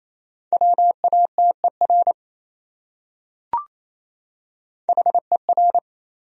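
Morse code sent at 28 words per minute as a steady mid-pitched tone, keyed rapidly into short and long beeps: two groups of characters separated by a silent pause and a single brief click.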